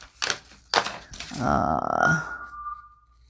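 Fancy scissors snip through thin folded paper, trimming its top and bottom: a few crisp separate cuts, then a longer crinkly cutting stroke that fades into a faint lingering ring. No one talks.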